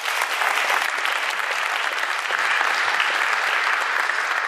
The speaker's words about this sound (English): Please give them a round of applause, folks.